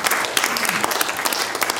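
A burst of audience applause, dense rapid clapping spread across the whole clip at a steady, fairly loud level with no voices over it.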